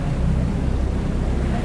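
A steady rumble of a boat carrying people across water on their way to another place, with engine drone, rushing wash and gusty wind buffeting the microphone throughout; no voices can be heard.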